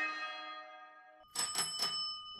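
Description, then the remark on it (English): A California squirrel rings a service bell: its bright metallic ring hangs and fades, then three quick, sharp dings follow in rapid succession, clear and fairly loud with no voices. “And my coworker was like, oh, we taught the squirrel to ring the bell.”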